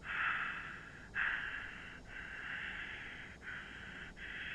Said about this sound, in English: He was greeted by nothing but someone breathing. He wondered if it was a disconnect, so he replied again.